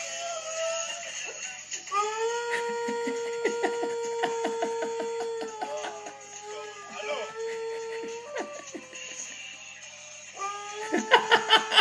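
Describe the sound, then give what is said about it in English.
A dog howls in long, wavering, high-pitched notes that rise and fall, singing along over the theme song of a popular Middle Eastern television show playing in the background, with rhythmic clicks and beats running underneath. “by putting this song on to playing it to the missing dogs that you have, and my dog will start singing along with it.”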